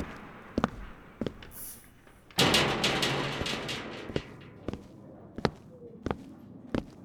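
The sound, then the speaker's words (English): Sharp, loud knocks on a door land at uneven intervals, with a brief stretch of heavier rattling banging partway through. No one speaks. “Open the fucking door.”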